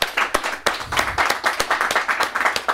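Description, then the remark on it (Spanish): A live studio audience at El Gallinazo breaks into steady applause, a dense wash of many hands clapping with a few sharper individual claps standing out, fairly loud throughout. “¡Fuerte el aplauso!”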